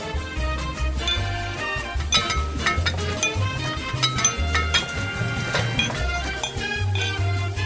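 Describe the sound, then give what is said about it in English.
Bright glassy clinks of wine glasses ring out repeatedly over a steady bed of music with a pulsing bass line, the chimes scattered, sparkling above the mix throughout. “the clink of glasses means it's time to welcome Miles Thompson from Prince Wine Store back in person”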